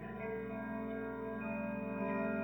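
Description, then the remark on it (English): A clock strikes midnight with a sustained, resonant bell-like tone that rings steadily and echoes, with faint ticking beneath it and no voices. “Midnight sounding upon the clock. Each strike gives me chills.”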